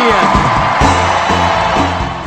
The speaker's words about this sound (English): But the biggest cheer of the week went to Senator Edward Kennedy.